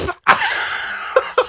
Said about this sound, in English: You notice how she's always coughing in the room? She's like, excuse me. Oh, my God. Oh, cough toot. Oh, excuse me. Excuse me. I had another coughing. Oh, these allergies.